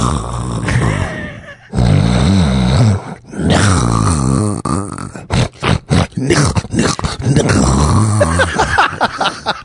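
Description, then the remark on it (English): A voice imitates a white man's angry snoring, loud, with several long, rasping, growl-like snorts broken by short pauses and quick choppy grunts. “That's how a white dude who uses the word snores.”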